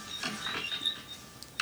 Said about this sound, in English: Can you hear the bed squeaking?